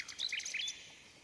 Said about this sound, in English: Now they must sing together, said the emperor. But they did not get on well, for the real nightingale sang in its own natural way, whereas the clockwork bird sang waltzes.